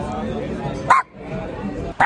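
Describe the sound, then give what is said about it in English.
A person imitates a dog barking with a couple of short, sharp vocal yips, one midway and one at the end, over a steady murmur of background voices. “I'm gonna bark at them.”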